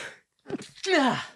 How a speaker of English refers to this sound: Yes, but I'm going to sneeze.